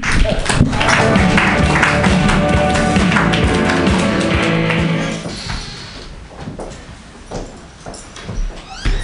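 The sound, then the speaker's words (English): An audience cheers and applauds loudly in a dense, steady roar for several seconds, then the noise drops to thinner, scattered clapping and a few fading shouts. “Make some noise”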